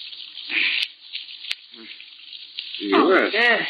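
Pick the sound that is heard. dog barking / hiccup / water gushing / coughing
water gushing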